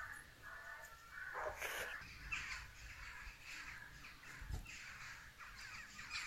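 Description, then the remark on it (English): A large flock of crows caws continuously, many overlapping harsh calls forming a dense, loud chorus with no clear rhythm. “Wow, that's the dream army of crows right there, isn't it?”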